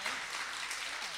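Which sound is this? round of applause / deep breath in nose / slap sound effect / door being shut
round of applause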